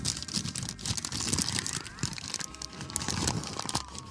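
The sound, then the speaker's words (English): Continuous crinkling and rustling of paper being unfolded, with dense crackly bursts and soft crunches filling the whole few seconds, no voices present. “And all the paper fetishists who follow this show, this is the point you wait for.”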